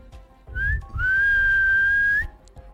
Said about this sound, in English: Those of you above hear a whistle echoing up. Did you hear that?